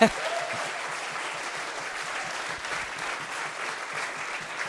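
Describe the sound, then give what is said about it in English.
A crowd applauds steadily to thank the morning's speakers, a dense wash of many hands clapping at an even, sustained level for several seconds without letting up. “And I'd love you just to kind of applaud these guys and say thank you for the wisdom that they've given us this morning.”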